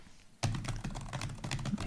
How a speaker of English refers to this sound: That's a lot of... While I do my quick Google search. It's a lot of solid typing. It's thorough. He has calluses from this type of typing.